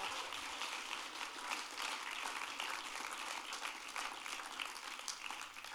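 A crowd claps steadily for several seconds, a dense, even patter of many hands with no voices rising above it, holding at a fairly constant level from start to finish.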